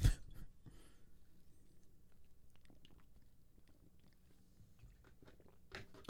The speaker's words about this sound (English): I gotta sip for this.